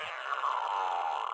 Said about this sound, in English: Oh. Fart machine. Fart machine, nice. Yeah. I figured it would come in handy. I could do it myself easily. Well, wait, was that that or you? I think there's like 16 of them on here.